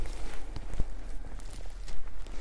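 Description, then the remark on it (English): Footsteps crunch through a forest floor at an unhurried walking pace on a walk through the woods, moderately loud, with soft outdoor ambience between steps and no one speaking. “So as I start my walk through the woods, I try to experience every single footstep.”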